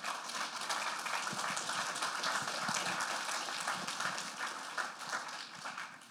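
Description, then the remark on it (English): A church audience applauds steadily to honor its senior members, a dense wash of many hands clapping at an even level for several seconds before easing slightly at the end, with no voices over it. “We honor you enough to clap for you, okay?”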